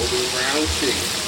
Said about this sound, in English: Hot oil crackles as the Sunday cook drops a piece of breaded chicken into a deep cast iron pot on the stove.